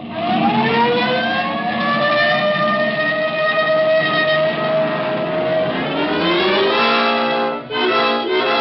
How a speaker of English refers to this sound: This time you can use the siren.